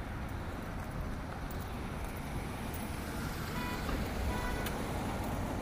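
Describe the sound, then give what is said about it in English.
A car comes along the road with a steady, low engine rumble and tire noise, continuous throughout, with faint higher tones near the end and no voices. “there's a car coming.”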